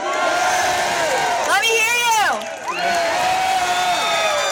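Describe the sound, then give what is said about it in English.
A crowd at the Victory Dance cheers loudly and continuously, many voices shouting and whooping together, with rising and falling yells swelling in the middle before a brief dip, then the cheering carries on. “And that cheering in the background was at the Victory Dance”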